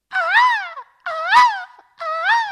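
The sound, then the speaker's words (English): Harry Douglas opens a show imitating a hawk's screech with three drawn-out, wavering high-pitched cries, each rising and falling, separated by short pauses, loud and alone with no talking. “So it's only right for me to lead this show today by making noises that a hawk makes.”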